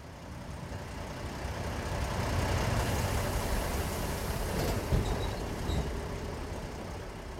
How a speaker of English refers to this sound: Chat was right. The bus takes ages.